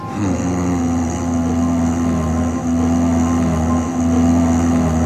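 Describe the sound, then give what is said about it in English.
A steady, low, bassy hum drones on without a break, its deep tone holding constant with faint higher overtones. No voices or other sounds interrupt it. “It is a very, very weird, low, bassy, humming sound that's there.”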